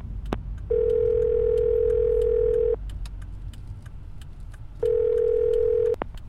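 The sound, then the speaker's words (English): A steady electronic car phone tone sounds twice in long stretches, with faint clicks and short blips of dialing between, over a low engine-like rumble inside a car. No one speaks. “We can do that in our car phone.”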